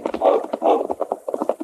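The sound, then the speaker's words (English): Horses' hooves gallop past in a quick, uneven run of thudding beats, moderately loud, with a couple of longer rushing swells early on before the steady clatter continues. “We'll leave the horses here.”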